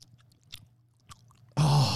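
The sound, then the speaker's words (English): Wet gum chewing with a few sporadic mouth smacks and clicks over a low hum, followed by a sudden loud, harsh burst of noise for the final half second. “I put in gum to try to provoke you here.”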